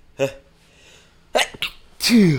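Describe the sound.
A person sneezes: a short voiced gasp, then a couple of sharp breathy catches, ending in one loud, forceful sneeze with a falling vocal tail.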